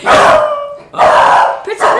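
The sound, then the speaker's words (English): A dog, Pretzel, barks loudly, three drawn-out, strained barks in quick succession, the last one shorter than the first two. “Oh, gosh. Dog drivers. All right, we're having a break.”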